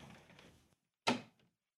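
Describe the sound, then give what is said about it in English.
A door is pushed shut by someone extending their whole body to reach it: a soft shuffling rustle, then a single solid thud and a brief faint rattle as it settles. No voices. “I had to extend my whole body to close the door.”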